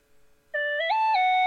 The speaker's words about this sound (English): And there my phone just goes.